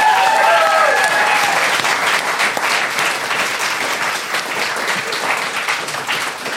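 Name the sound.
audience round of applause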